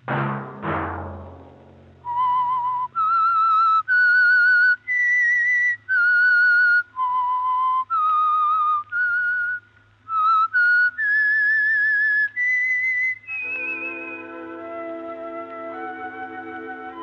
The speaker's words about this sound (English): Let that whistle be your signal for the Signal Oil program, The Whistler, each Sunday night at this same time.